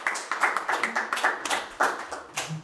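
A short burst of applause: a few people clapping quickly with sharp, bright, overlapping claps at a steady pace for a couple of seconds, with no one speaking.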